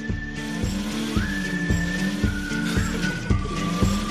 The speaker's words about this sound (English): Put it in drive. You're just revving the engine. You're just revving the engine.